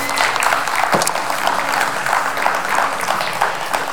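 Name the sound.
audience hand clapping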